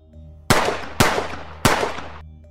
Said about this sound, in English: I still see no lights, and I realize that that's not fireworks. Those are gunshots.